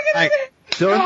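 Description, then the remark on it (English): In a movie scene, a man slaps a hysterical woman: a sharp, single face slap cracks out right after a voice cries out, and a strained, shouting voice resumes immediately after the smack, all loud. “Men slapping hysterical women.”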